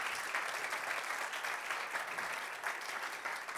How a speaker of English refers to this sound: We can give Jesus a round of applause for that.